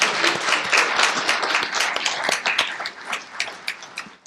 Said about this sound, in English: So if we give one more round of applause, thank you.